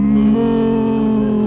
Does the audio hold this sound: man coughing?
no